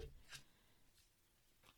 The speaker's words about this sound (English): So let's get started. I am going to shuffle through this little pile and see which question I get.